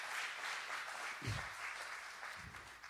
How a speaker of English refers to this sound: And boy, whenever you get up and you wreck, yes, give God applause.